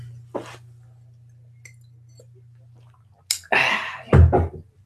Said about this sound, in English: I'll just have a quick glass of water. Stuff it. Just have a quick glass of water.